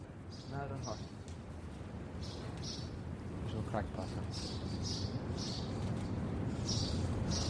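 Several small birds chirp and twitter in quick, repeated bursts throughout around five or six nests, over a steady low rumble of outdoor background noise.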